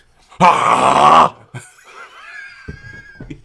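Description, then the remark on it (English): A person imitates a dog's growl or snarl: one loud, rough, raspy burst lasting about a second, then quieter strained vocal noises trailing off. “Look more like a growl. I'm not sure if it's more of a bark or not.”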